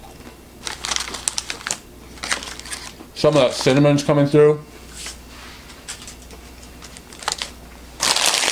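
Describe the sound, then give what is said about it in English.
Crisp, crackly crunching comes in bursts of quick, irregular snaps as someone chews a sweet, cinnamon-roll-flavoured mini snack, crunchy like a biscuit, eaten straight from the bag. A short spoken remark breaks in midway, then the crunching resumes. “It's more on the crunchy side, like a biscuit, but it's tasty, sweet.”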